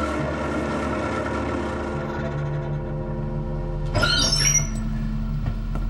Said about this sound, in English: In a few moments, a small motor coach of extreme decrepitude rattled down State Street.